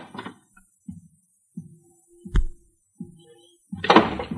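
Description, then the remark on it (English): A door in a suite opens with a sharp latch click as a man enters the room, amid a series of soft wooden thunks and creaks, fairly quiet, ending in a louder rustling bump. No one speaks. “Now the clouds were beginning to lift, and at the same time, the door opened in the suite and the silhouetted figure of a man entered the room.”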